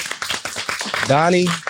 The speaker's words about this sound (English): Let's clap that up.